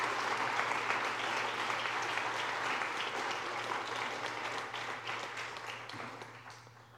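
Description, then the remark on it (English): An audience applauds students steadily, a dense wash of many hands clapping at once that holds strong and then gradually tapers off over about seven seconds, with no voices standing out. “Round of applause for these students, everybody.”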